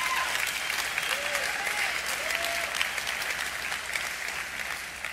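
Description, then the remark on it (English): Steady applause from a large crowd, a dense continuous patter of many hands clapping at once, with a few faint whoops rising above it. “If y'all going to clap, clap.”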